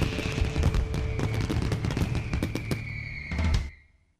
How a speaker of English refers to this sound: along with an amazing fireworks show at dark. It's an event for the entire family. So, join us at A Brazen Park for Chisholm Trail Casino and the City of Duncan's Red, White, and Boom Fireworks Spectacular.